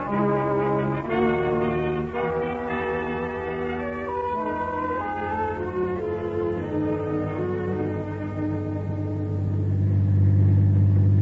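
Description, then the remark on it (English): A car engine rumbles steadily as the vehicle drives, with a deep low drone that swells louder toward the end, mixed with sustained tonal layers and no voices. “Get out an alarm right away on this car. Black Ford Sedan.”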